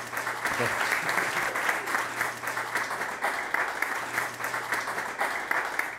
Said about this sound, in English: please join me, give a big round of applause for Mr. James Holland Jones, tonight's speaker